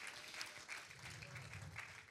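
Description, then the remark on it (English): A church audience claps steadily as they are being seated, the dense patter of many hands filling the space at moderate volume, with a faint murmur of voices mixed underneath. “Why don't you clap your hands as you're being seated?”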